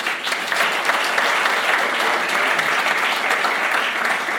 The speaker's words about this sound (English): But we will baptize these three this afternoon. A round of applause.